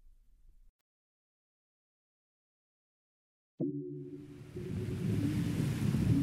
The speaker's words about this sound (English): The waves aren't too big, which is fun. Yeah, they're pretty good beginner waves here.